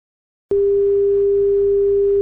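A phone call tone sounds: one steady, unbroken mid-pitched hum that switches on after a brief silence and holds at even loudness, with no voices.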